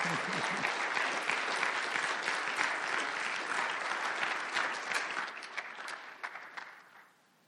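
A crowd applauds with dense, steady clapping that holds for several seconds, then thins into scattered individual claps before fading out.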